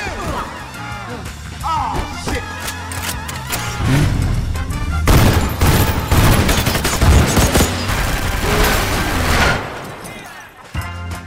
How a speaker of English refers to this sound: we wanted the gunshots, the flashes of the gunshots, to be in sync with the music too.